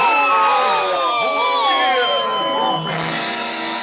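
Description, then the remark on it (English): A crowd of children yell "boo" together on a count of three to bring down someone climbing, their overlapping high voices rising and falling in a loud, sustained chorus of shouting. “We'll all yell boo at him.”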